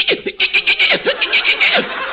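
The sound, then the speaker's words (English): A human voice imitates the wild chattering of monkeys, a rapid series of high, bright, pulsing squeals and yelps repeated in quick bursts, loud. “The wild chattering of the monkeys.”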